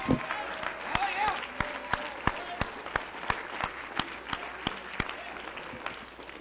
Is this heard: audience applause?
yes